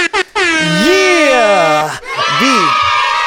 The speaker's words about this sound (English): If you just did it, a huge shout out to you. Air horns all around.